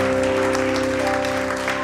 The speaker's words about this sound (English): Oh, somebody give the Lord a clap in the house.